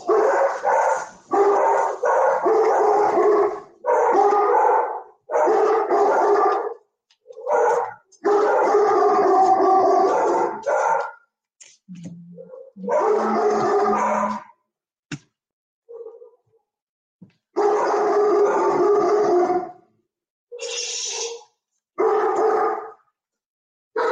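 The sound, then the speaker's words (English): A dog barks and howls in a run of loud, drawn-out bursts with short pauses between them, with no one talking over it. “Well, my show's not complete unless my dog starts barking in the middle of it, right?”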